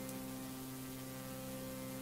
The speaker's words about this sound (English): And now it's static. Okay. That's done. So TV went static, and now what is the woman just gonna leave her child with this weird man in her TV?